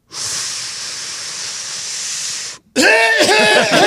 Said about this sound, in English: That's normally what happens. Well, he had four coughs on his Laremy Tunsil, so we know we got some work to do there.